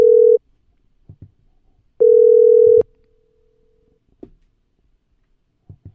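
A steady electronic ringback tone sounds twice, a short burst then a longer one, over a quiet line with faint clicks and rustles in between.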